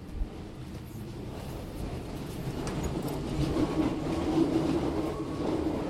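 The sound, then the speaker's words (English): Steady low rumble from inside a moving metro car, with rattling and a faint tonal hum rising slightly in the middle of the ride; no one speaks. “There's a lot of French people on this subway. Metro.”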